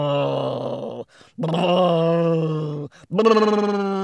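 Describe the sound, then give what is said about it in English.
A voice imitates elephants snoring with three long, loud, rumbling groans, each drawn-out breath separated by a brief pause, with no words. “Until the elephants began to snore.”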